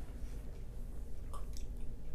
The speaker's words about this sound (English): So, that was two gulps.